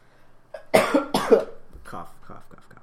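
Two sharp coughs in quick succession, followed by a few softer murmuring vocal sounds trailing off.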